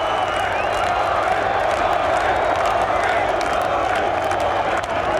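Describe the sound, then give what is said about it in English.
A large golf crowd at the Open Championship roars and cheers after a shot by Rory McIlroy: one dense, unbroken wall of sound, loud and steady for the whole stretch, with whoops and clapping blended into the roar. “It was like standing next to a jet engine as it's taking off. You can't hear yourself think.”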